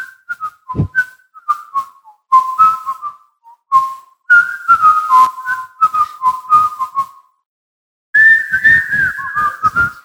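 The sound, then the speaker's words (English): A person whistles a bouncy tune, the Andy Griffith theme song, in clear phrases with short pauses between them, the melody carrying alone with no talking, in a slightly echoey space. “Little Andy Griffith theme song. Hit it.”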